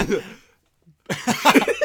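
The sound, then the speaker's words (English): A loud bout of coughing: a rough burst, a short pause, then a longer run of harsh, raspy coughs with no talking. “I need to give me a sec while I cough.”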